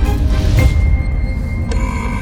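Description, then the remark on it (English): A door mechanism locks shut over a steady low mechanical rumble, with a brief scrape midway and then a sharp clunk that leaves a sustained high electronic tone ringing. No one speaks. “And speaking of Daleks, that's the door locked.”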